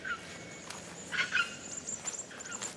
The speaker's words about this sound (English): Oh, that's a red wattle bird. Chuck, chuck. Can you hear them calling to each other?